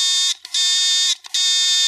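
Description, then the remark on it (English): A harsh electronic buzzer marking the end of a spoiler-free section sounds in three loud, steady blasts separated by brief gaps, its rasping tone rich in overtones. There is no talking. “Retire the buzzer.”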